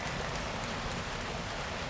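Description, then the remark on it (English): A dense, steady patter fills the air like heavy rain as a group slaps their legs to imitate a pouring downpour, many hands in a continuous roar with no pauses or speech. “Now, your legs. Now it's pouring.”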